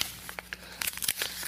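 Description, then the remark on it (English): Paper being grabbed and crinkled, a run of short rustling and crackling bursts that get denser and louder toward the end, with no talking. “I'm going to find some paper. I know I've got a printer I don't need.”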